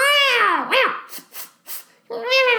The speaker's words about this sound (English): Velma is relegated to a single scene in which she and Roxy dive headfirst into a brawl. We hear the sound, I love this, we hear the sound of literal cats howling throughout this fight.